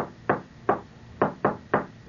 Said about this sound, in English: He's banging his pencil, see? And of course, it was just echoing around the room. He's just going like that.